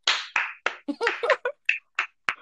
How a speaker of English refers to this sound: Look how you clapping now.